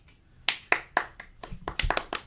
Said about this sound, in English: I said clap.